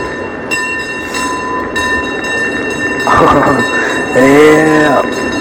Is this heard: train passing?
yes